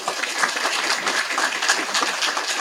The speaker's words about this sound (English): So thank you again for being here, and thank you for helping celebrating us, Du Bois Honor Guard, or VFW Honor Guard. They always do a great job also. Let's have a round of applause for those folks, too.